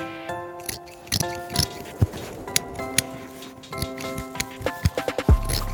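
Scissors snip through a bolt of fabric in a run of crisp, irregular cuts in a room at 8:27 on a Monday morning, while tinny music plays softly from a radio in the background.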